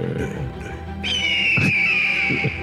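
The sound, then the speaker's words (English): An eagle call rings out: a long, shrill, piercing cry that holds high and slowly slides downward, laid over a low, murky rumble with a couple of soft thuds. “Right on cue, the crow. It's an eagle.”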